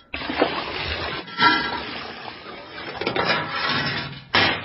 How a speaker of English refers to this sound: drawing water from a well.